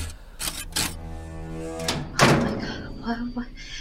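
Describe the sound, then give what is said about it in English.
A door slams shut with a loud thud after a few lighter rattling knocks, then brief muffled vocal sounds follow over a low steady hum. “As you shut the door, the last possible second.”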